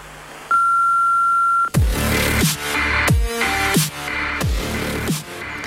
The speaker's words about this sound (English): Poklicali ste Črno luknjo in njeno kontrainformativno mrežo. Po pisku oddajte svoj glas.